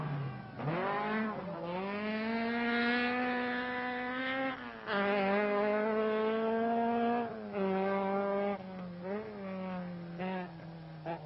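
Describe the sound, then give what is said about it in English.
The engine of Fisher's Alamac Manta rally car, prepared by Sydney Meek, screams at high revs on a stage of the Donegal rally, its pitch climbing and dropping sharply with each gear change as it races along continuously with no talking. “Fisher in the Alamac Manta just cannot shake off his great rival, and his lead could evaporate with a simple puncture.”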